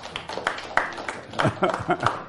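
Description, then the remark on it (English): A church audience applauds Jesse Peterson as he begins a live service, with uneven, crackling claps of moderate loudness, while voices talk and murmur over the clapping throughout. “They're applauding you.”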